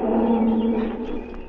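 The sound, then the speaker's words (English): A lioness roars, one long, low, rumbling call that holds steady for over a second before easing off slightly, with no voices present. “The lion's wife. She come closer.”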